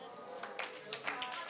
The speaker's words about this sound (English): You see, your clapping says you're offended. I'm glad you're offended.